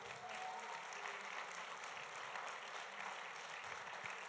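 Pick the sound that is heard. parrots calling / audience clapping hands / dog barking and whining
audience clapping hands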